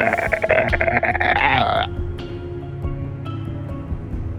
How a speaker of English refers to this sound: It is humongous, rippling muscles and sinews, and a blue hide. It's a frog man, and it roars in your direction, bellowing its deep throat pouch.